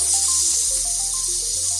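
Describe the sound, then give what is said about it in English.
A burger sizzles in a loud, steady, bright hiss that runs the whole time, with short melodic tones and a low droning hum underneath. No one speaks. “Oh, what's something sizzling? Aha, it's a 50 burger.”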